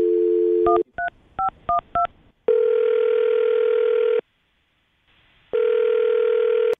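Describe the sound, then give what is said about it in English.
A dial tone gives way to a quick series of touch-tone key beeps as a phone number is dialed, then long, steady ringback tones repeat with a pause between them, clear, with no talking. “Well, I'm going to dial her phone number right now and see if we can figure out why she's not getting back to you, okay?”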